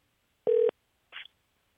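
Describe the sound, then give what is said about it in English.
A single steady electronic phone beep lasting a quarter second, followed by a brief softer click-like blip, with a thin telephone-line quality and no voices, as a phone number is dialed to call a fan. “And I think it might be time for a fan phone call.”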